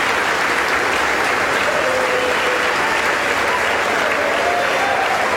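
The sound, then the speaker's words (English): Sustained, dense applause in the House of Representatives chamber for Congressman Mike Johnson, as Speaker pro tem Patrick McHenry reads the vote; a steady wash of many hands clapping at an even, loud level throughout with no pauses. “There's applause right now going on for Congressman Mike Johnson as the Speaker pro tem, Patrick McHenry, is reading.”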